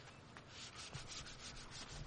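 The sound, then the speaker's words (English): Steady sanding of a wooden boat: a continuous raspy scratching with repeated back-and-forth strokes, moderately loud, with no voices. “I gotta do my boat sanding since Dad passed away.”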